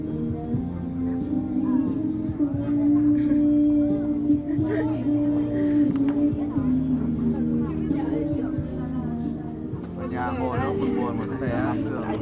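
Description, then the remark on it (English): Busy city street ambience: a steady, dense low rumble mixed with overlapping crowd chatter, holding at a constant loudness, with voices growing more noticeable toward the end. “Officially, the park will be closed in less than 30 minutes, but as you can hear, the city is not slowing down.”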